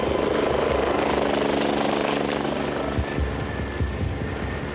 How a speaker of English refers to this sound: And I remember being put into the life flight helicopter.